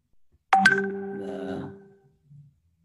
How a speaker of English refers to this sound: Okay, saved by the bell. That was the bell you heard.